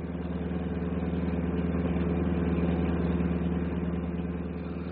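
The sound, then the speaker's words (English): A bus engine drones steadily at idle, a low, even rumble with a faint rhythmic throb that holds constant throughout, moderately loud, with no voices. “you're snoring louder than the bus motor.”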